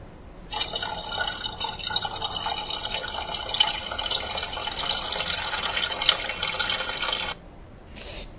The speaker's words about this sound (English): I'm getting thirsty. I'm going to get some water.